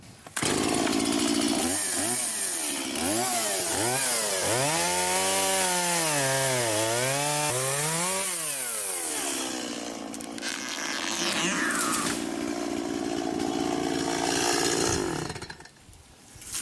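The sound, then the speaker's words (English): A chainsaw revs loudly, its engine whining up and down in repeated surges before settling into a steady, rough cutting roar as it fells a tree, cutting off near the end. No one speaks. “Now, low code is like using a chainsaw to chop the same tree here. And then a chainsaw definitely be faster than an axe.”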